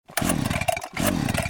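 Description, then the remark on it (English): A small lawn equipment engine sputters loudly in two rough bursts, its pitch sweeping down and back up each time as it tries and fails to catch, with no one talking. “Lawn care got you down? Equipment never wants to start?”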